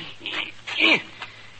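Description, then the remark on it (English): A dog having its broken leg set lets out a couple of short, high whimpers, the second a brief whine that slides downward in pitch, with quiet background noise between them. “And if I don't, well, I keep my hand in, setting a broken leg on a dog.”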